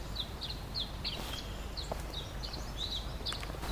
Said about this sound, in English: Oh, look, it's a bird. We just saw... There's another bird. A magnolia warbler, and a yellow warbler, and a northern water thrush. And a towhee. And I'm hearing more birds.